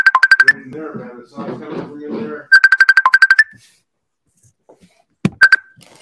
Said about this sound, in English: and someone's gonna call me, and I don't know how to stop it. Hopefully, it'll just go away. On the computer.